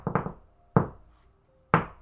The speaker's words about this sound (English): I'm just gonna do my knock on the door that's also, like they would know it's me because I'm the only person that knocks like this.